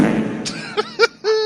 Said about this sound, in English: Play the Opera House fart again.